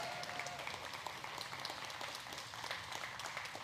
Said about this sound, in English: You can still clap again.